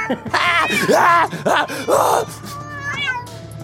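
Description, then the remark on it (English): Many cats, about 75 in view, meow in a drawn-out, overlapping chorus, loud, with wavering high-pitched cries rising and falling in quick bursts, followed by fainter mewing. “Okay, I'm up here. I see 75 cats.”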